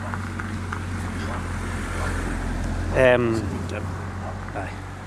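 A car passes on a road by Loch Lomond, Scotland, over a steady low engine rumble, swelling briefly into a louder whining sweep partway through before settling back into the background drone.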